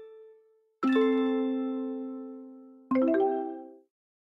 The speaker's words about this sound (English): I got 3 different notification sounds, you know that?